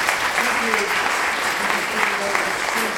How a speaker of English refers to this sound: A big round of applause for our soldiers.